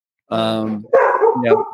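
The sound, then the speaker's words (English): A dog barks loudly, two drawn-out, howling-toned barks in quick succession with a brief gap between them. “Hey, what's up there, good doggy?”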